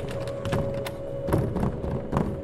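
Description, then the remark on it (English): Heavy thumps pound against a shaking door in an uneven, violent rhythm, several dull knocks followed by a loud thud over a low steady hum, with no one speaking. “Just as soon as I stopped again in concern, that the door began shaking with a violent rhythm, followed by a loud thud.”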